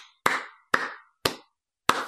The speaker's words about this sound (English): That was my applause of welcoming you in here.